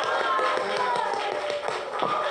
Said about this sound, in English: Yeah, you can clap your hands to Jesus on that one.